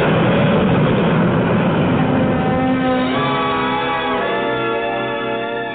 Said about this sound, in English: You're in one of Easton's whisper jets. The noisiest section is the pilot's compartment. Yep. We keep the door closed. Flaps coming by. In the cabin, it's quiet. The jets and the noise are behind you.